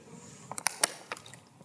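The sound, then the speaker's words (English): A quiet sip of water: a handful of sharp little clicks and taps, like a bottle cap or cup being handled, in two short clusters with no talking. “If you'd like to take your Bibles and turn to Genesis 14, it's good to read it, and it also gives me a chance to take a drink of water real quickly.”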